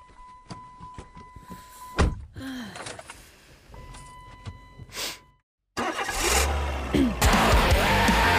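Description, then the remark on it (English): Noises of a car: a solid door thunk, some clicks and clunks, then a short silence before the car's engine turns over and settles into a loud, steady idle. “Well, actually, it's my car.”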